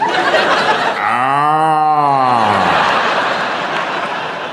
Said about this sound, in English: And the cow. He's sick. Moo.